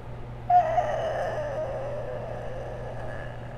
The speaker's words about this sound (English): Yeah, whatever screeching noise that came out of your human had to be painful for the listeners. I'm sorry if you were, like, driving in your car and you thought that someone was, like, dying beside you